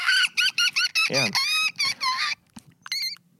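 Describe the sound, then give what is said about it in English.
A voice imitates dolphin song, a little song performed for the dolphins, with a run of high, squeaky chirps and whistles: several quick bursts, a sliding pitch sweep, then longer warbling tones, a pause, and a final rising squeal. “We got a little song we do for the dolphins. It goes like this.”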